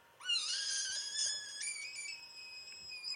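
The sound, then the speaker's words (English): A frog's scream, played from a video, as a cat paws at the frog: one long, shrill, tonal wail that swoops up at the start, jumps a little higher midway, and holds steady for about three seconds with no talking. “Yeah, I've typed in frog screaming, but I don't know what any of these are going to actually sound like.”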